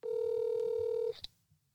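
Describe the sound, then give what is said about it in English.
A phone call tone, made while phoning a friend, sounds as one steady electronic note for about a second, then cuts off with a brief click. Fairly clear, with no talking. “Okay, I'm phoning a friend.”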